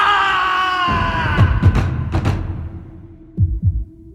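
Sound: guttural scream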